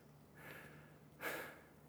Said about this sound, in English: I'm trying not to be out of breath, but talking, over breathing while trying to climb up a hill. Trying to act all cool that I'm not really like.